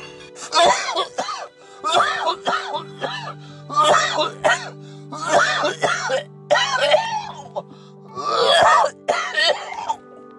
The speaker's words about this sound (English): See, look at it. My weed got you coughing up. Look at all that beef and broccoli shit you throwing the fuck up. You hacking all that shit the fuck up.